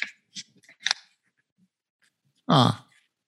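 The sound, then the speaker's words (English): A few crisp scissor snips cut through paper in quick succession, followed after a pause by one louder, longer slicing cut, with no talking. “So you did the same thing with the scissors.”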